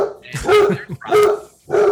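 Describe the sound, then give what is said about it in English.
A dog barks three times, loud, sharp bursts separated by brief pauses, with a slightly whiny, yelping tone to each bark. “As you can see today, podcast is brought to you by the dog.”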